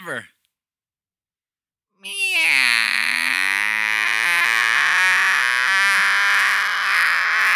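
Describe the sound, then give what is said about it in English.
After a brief sound and a short pause, a human voice imitates a cat with one long, drawn-out, whiny meow, loud and close, wavering in pitch for several seconds. “And she even dared to meow one more time for attention. And she did it with one of those long and whiny ones that seemed to last forever.”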